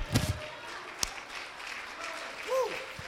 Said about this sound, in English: Come on, somebody. Let's give him one more hand clap of praise right now.